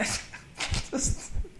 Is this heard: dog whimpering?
yes